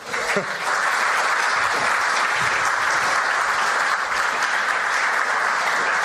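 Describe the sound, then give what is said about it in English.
A large audience claps steadily and loudly for several seconds, a dense, continuous wash of hand claps with no pauses, a round of applause welcoming Dr. John Camp, who has excavated for 50 years at the Athenian Agora. “Please give him a round of applause.”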